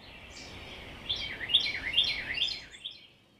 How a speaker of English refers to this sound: And then for whatever reason, it will stop because maybe it just decided it didn't want to sing anymore. Or it might have flown away. And then your ear listens to another bird that might be singing a different song.